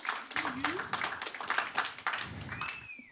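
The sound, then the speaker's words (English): An audience at an evening church gathering applauds a guest preacher about to open the word, with dense, steady clapping for a few seconds, cheering voices mixed in and a rising whistle near the end. “Would you give him a round of applause as he's going to share and open the word with us tonight?”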